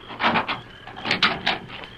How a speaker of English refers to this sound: Tubbs is here. Open the door.